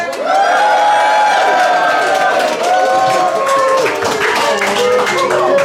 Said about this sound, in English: The crowd goes wild.